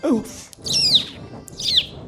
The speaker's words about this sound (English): Oh, a passing bird.